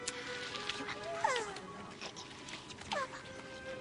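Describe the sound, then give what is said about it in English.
A dog gives two short, high whining yelps that slide downward in pitch, about two seconds apart, over a steady low background hum. “Hi, there's the dog.”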